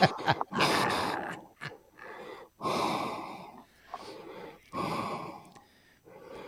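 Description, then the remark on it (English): A voice imitates heavy, raspy breathing into a microphone, with about four loud wheezing inhale-exhale cycles in a slow, steady rhythm. “you sound like you're just breathing hard.”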